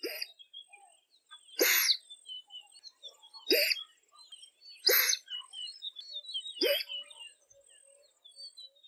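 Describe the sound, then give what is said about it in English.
A dik-dik's alarm call: five or so shrill, nasal whistle-bursts at irregular intervals, each sharp and rising, while faint high bird chirps continue in the background. “Dick-Dicks are named for their alarm calls of the females.”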